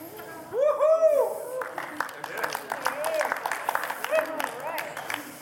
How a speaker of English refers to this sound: A smattering of applause.